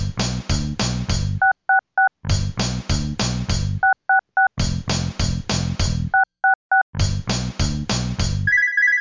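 Loud, clattering telephone ringing bursts alternate with short triplets of touch-tone dialing beeps as a call is placed on a landline, dialing 666. The pattern repeats four times in a steady rhythm, with a brief higher tone at the end; no one speaks.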